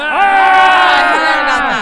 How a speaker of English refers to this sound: Thank you. You were supposed to scream.